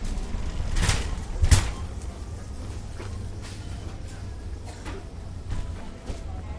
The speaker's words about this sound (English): First of all, I have to say, I love the whoosh of the air conditioner as you come in from 105 degree heat. It's just really nice, that whoosh where your hair just kind of blows back.